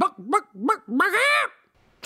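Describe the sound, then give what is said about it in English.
A voice imitates a chicken: three short, quick clucks followed by a longer, loud, drawn-out squawk, then a brief silence. “I'm just making chicken noises now.”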